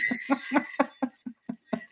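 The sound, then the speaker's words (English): Large jingle bells on leather shaken in a steady rhythm, about eight bright, clinking jangles evenly spaced with brief pauses between, heard alone without any talking. “Yeah, those are jingle bells.”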